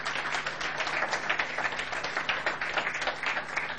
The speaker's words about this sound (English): And I think she deserves a round of applause this morning.